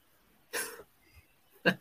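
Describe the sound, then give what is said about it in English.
Two short coughs a second apart, the first a broad, breathy burst and the second sharper and more clipped, with quiet between them and no talking. “First of all, you've got a mute button for when you cough.”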